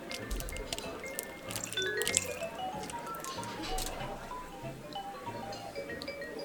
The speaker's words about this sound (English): I'm gonna throw a little splash of water in mine. Yeah, let's do that. Let's see what happens when we do that.